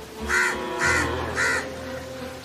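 A crow caws three times in a steady, evenly spaced series, each call harsh, with no voices over it.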